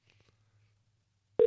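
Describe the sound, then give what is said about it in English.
Near silence, then the loud, steady electronic ringing tone of an outgoing phone call starts abruptly right at the end, a single sustained pitch cut off after a brief moment. “Hey, Bill, if you're listening, tell your brother to pick up the phone.”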